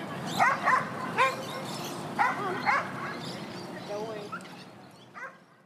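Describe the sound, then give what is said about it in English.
Dogs bark in sharp bursts at a busy dog park, several yips and woofs scattered over a few seconds amid a steady outdoor murmur of activity, with a voice in the background. “Like me, right now, I'm at the dog park with my boyfriend's dog.”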